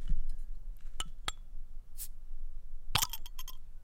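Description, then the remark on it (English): Glass bottles of Pilsner Urquell beer clink and caps snap off in a few sharp pops, with a short airy hiss and a final cluster of rattling clicks; nobody speaks. “All right, let's pop these bad boys open.”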